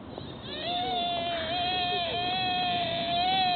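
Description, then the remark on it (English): A deer gives one long, drawn-out whining call, a steady high-pitched tone that wavers slightly and holds for about three seconds, loud and sounding on its own with no talk. “That's what a normal deer sounds like?”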